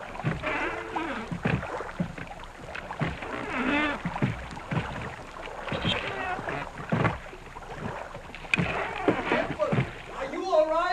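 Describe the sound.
A small boat moves through water and is brought in closer, with steady sloshing and splashing against the hull while several voices talk and call out over the noise.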